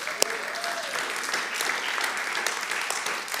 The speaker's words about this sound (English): So you guys can clap for them.